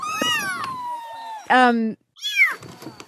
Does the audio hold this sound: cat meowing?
yes